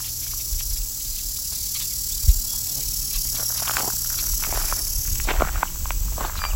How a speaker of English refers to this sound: And some red-winged blackbirds.